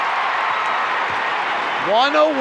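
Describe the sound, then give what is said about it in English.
A dense basketball arena crowd roars steadily during a Jazz playoff game, then near the end, with the score 101-99 and 33.4 seconds left, many voices rise together into a loud, rhythmic chant of "defense". “Crowd chanting defense.”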